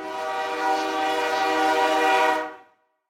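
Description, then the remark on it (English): A loud train horn blares steadily for a couple of seconds over the rumble of a passing train, then cuts off abruptly into silence. “Let's talk about bomb trains.”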